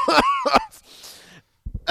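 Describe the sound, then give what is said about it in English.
A short burst of harsh, throaty coughing in a studio, two sharp hacks followed by a raspy wheezing breath, then another cough starting at the end. “This is what happens when you don't have a cough button in a studio.”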